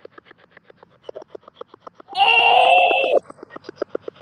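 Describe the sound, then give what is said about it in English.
A cat ball ghost-hunting toy goes off: a steady stream of quick, soft clicking pulses broken by a loud, buzzy electronic burst lasting about a second, then the rapid pulses carry on. “Was that you that just made the cat ball go off?”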